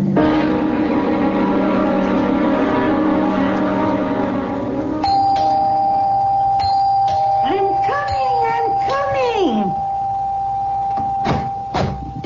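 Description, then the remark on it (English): A doorbell rings over and over, its bright tones sounding in quick succession, followed by voices talking over a steady background hum. “Rip the bell off the door, young man.”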